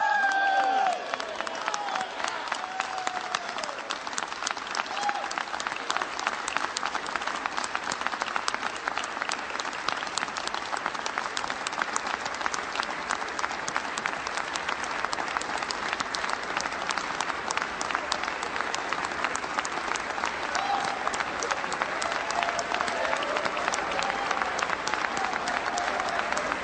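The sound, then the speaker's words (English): Sustained, loud applause from a large crowd fills the House chamber for Congressman Patrick McHenry as he nominates Kevin McCarthy for Speaker of the House, a dense steady roar of many hands clapping for almost half a minute, with faint cheers mixed in. “And a rousing applause for Congressman Patrick McHenry, who is submitting for nomination.”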